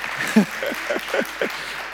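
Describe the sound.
A steady round of applause from a group in a church, a continuous crackling wash of clapping that holds for the whole two seconds, with a few voices murmuring underneath.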